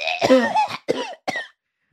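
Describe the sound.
A voice imitates a woman's loud, open cough made without covering the mouth: one harsh, hacking burst followed by two shorter rasping coughs, forceful, then silence.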